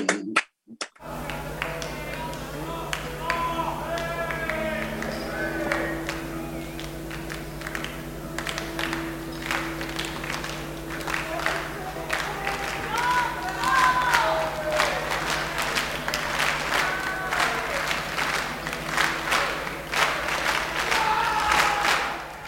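A crowd claps together in a steady, syncopated signature rhythm, sharp repeated hand claps over a continuous murmur of voices and scattered cheers, with a low electrical hum underneath.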